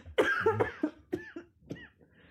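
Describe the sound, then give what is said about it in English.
A harsh coughing fit after choking on one's own saliva: a long raspy cough followed by several shorter, sharp coughs in quick succession, tapering off with a faint breath at the end. “I breathed in and choked on my own saliva”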